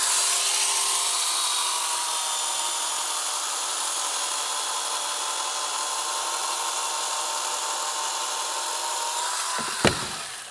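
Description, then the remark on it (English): A chainsaw roars steadily through a block of ice as an ice sculptor carves away the big chunks, its buzzing whine holding loud for about ten seconds before a brief sharp crack near the end. “They have to carve away the big chunks first. And what they use to do that is literally a chainsaw.”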